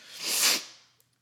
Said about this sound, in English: But, God damn, I am so sorry. I cannot stop yawning.